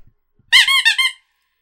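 A high, nasal honking squeak, like a goose or a squeezed rubber chew toy, repeated in about four quick bursts over half a second, fairly loud, with no voices.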